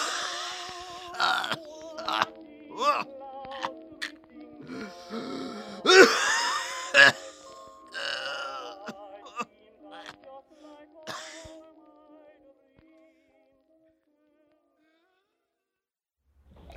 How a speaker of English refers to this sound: I think I can tell you. You're choking on it right now.